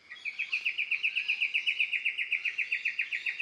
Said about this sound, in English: well, we can hear some birds. What do you think they are? So, well, there's a fig bird. There's a magpie lark. There's an oriole. It's a Lewin's honeyeater, the machine gun bird. Choo, choo, choo, choo, choo, choo, choo.